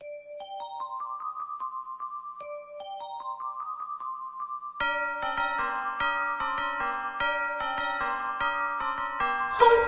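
A Christmas song intro opens with bright chiming bells rising in a repeating pattern. About halfway through, fuller instruments and a steady beat join, loud, with no voices.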